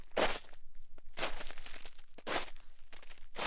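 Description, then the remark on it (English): Four heavy, crunching footsteps of climbers in nearly foot-deep snow on Mount Hood at night, around 6,000 feet in slightly above freezing temperatures. They are evenly paced about a second apart, each a broad gritty burst. Clear, with no voices. “The snow was nearly a foot deep, and their footsteps created a crunchy rhythm that broke the silence of the night around them.”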